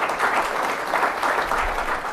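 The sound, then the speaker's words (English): A crowd claps steadily to welcome the newly installed president of the Millennium Challenge Corporation, a dense and even round of applause at a fairly loud level that holds without letting up, with no voices standing out. “Why don't we give our friend Sean a round of applause and welcome him.”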